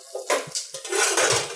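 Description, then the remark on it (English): A metal soup pot left on the stove clatters and scrapes against the stovetop in a quick run of clanks and rattles, bright and fairly loud, with a softer thud in between and no voices. “I forgot I had left some soup on the stove.”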